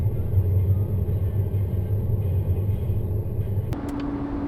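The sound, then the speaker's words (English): A truck driving down the road toward Georgia: steady low road rumble fills the cabin, a constant droning hum with engine tone underneath, shifting slightly near the end as a brief click cuts through. “So anyway, we're driving down the road and me and my son are heading toward Georgia.”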